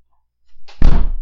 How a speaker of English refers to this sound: Guys with class, he almost killed himself. He almost tripped going out the fucking door.